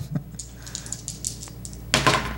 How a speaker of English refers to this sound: I'm knocking on wood.